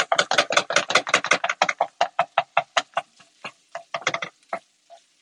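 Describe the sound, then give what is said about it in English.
A knife chops food perpendicularly on a cutting board in a quick, steady run of sharp knocks that gradually slows and thins out toward the end, with no talking. “You can probably hear me chopping.”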